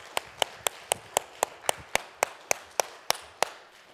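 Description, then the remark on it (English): An audience claps in steady unison for all the ladies in the church, about thirteen sharp, crisp claps at roughly three per second, evenly spaced with no talking over them. “Everybody, can you help me give a round of applause to all the ladies in this church, please?”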